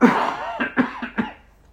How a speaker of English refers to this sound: Sorry, I'm just going to have to cough.